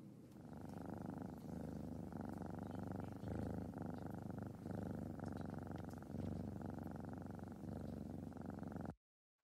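A small cat purrs steadily for about nine seconds, a continuous low rumbling with a soft rhythmic pulse, then it stops abruptly. No one speaks.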